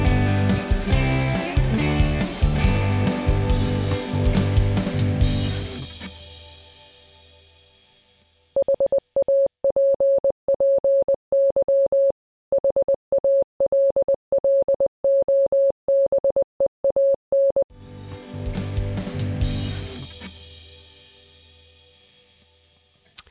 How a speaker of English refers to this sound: All right. Well, We're going to take a little Morse code break. Yeah, all three of us code real quick. All right, enjoy this Morse code, and we'll be right back.